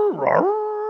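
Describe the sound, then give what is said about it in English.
A person's voice imitating a monster roaring in defiance: a rough, growling burst that settles into a drawn-out, howl-like tone, fairly loud, lasting under a second with no other talk. “After it hits you and misses you, it roars in defiance.”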